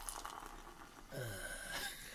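Odell Brewing Company Oktoberfest beer from Fort Collins, Colorado, a dark straw-colored beer, pours into a glass with a soft, fizzy splash, its pitch rising gradually as the glass fills under a light khaki head of tiny bubbles. The sound is quiet, with no voices.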